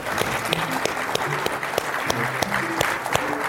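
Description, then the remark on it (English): A steady burst of audience applause for the panelists, dense overlapping claps sustained at an even level throughout, with a faint murmur of voices underneath. “I'd like to give a round of applause for them.”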